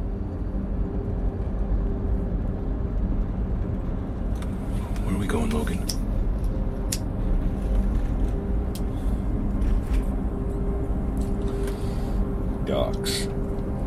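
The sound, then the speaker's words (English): A steady, deep rumble of a car on the move, like road and engine noise heard from inside, holding constant throughout with a few faint clicks and ticks over it. “And he made me get into our car and start driving.”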